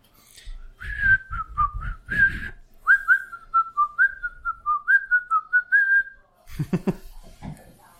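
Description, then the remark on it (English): Someone whistles a short, bouncy melody, the notes rising and falling in quick steps for several seconds, followed by a brief burst of other noise at the end. “Just whistle while you whiskey.”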